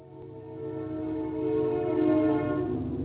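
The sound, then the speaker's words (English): A train whistle blows in one long, continuous note, rich and droning, growing slightly louder as it holds for about three seconds with no voices. “Well, if you've missed hearing a train whistle, here it comes again.”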